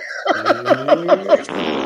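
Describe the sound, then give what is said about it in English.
A loud fart sound effect played from a soundboard sputters out in a quick rhythmic run of about six buzzy pulses, then trails off into a short breathy hiss, with no talking. “I tried to find the applause button for you. No, not the fart thing.”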